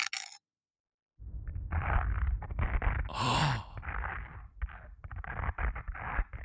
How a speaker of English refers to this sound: The first example is on Earth, as was recorded, and then it's followed by on Mars. Oh, a lovely, crunchy, familiar, earthy toast sound. Love it.